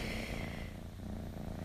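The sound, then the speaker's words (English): A domestic cat named Augustus purring, a steady low rumble with an even pulsing rhythm that continues without a break for the whole moment. No voices. “I'm sitting here staring at my cat, Augustus.”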